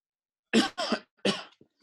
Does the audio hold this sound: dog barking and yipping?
no